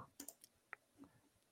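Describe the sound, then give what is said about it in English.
A quick run of sharp clicks and ticks from a dice roll, several in under two seconds at an uneven pace, with no voices. “There's a lot of clicking for one roll”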